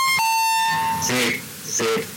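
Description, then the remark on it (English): A bright electronic chime from a self-made number station broadcast rings out with a steady tone and stacked harmonics. It is followed by clipped, radio-like speech bursts over a crackly, filtered background. “So to get an idea of what a number station sounds like, why not, after the chime, consider the following words.”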